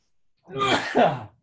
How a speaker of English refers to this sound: Bless you.